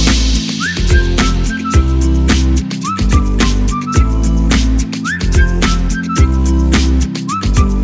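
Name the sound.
whistle being blown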